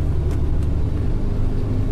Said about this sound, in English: The side road we're going down, there are a lot of trees. A low branch is striking the roof of the bus. Quite brave to drive a double-decker bus down here, I think.